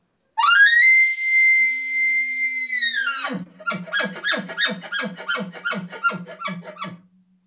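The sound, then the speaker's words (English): An elk caller's imitated typical elk bugle: a loud, high, sustained whistling tone for about three seconds, then a rapid chuckle on the end of roughly ten quick, guttural pulses in steady rhythm. “So here's what a typical bugle would sound like with a chuckle on the end.”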